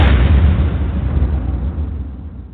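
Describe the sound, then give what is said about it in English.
An explosion sound effect, the Duct Tape Seminar Explosion: a loud, booming blast bursts out at once and rolls into a deep, rumbling roar that slowly fades over a couple of seconds, with no voices. “And ladies and gentlemen, thank you for the great feedback on our initiation of the Duct Tape Seminar Explosion.”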